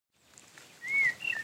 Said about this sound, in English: You can probably hear all the bird song as we're walking down a path between the ferns.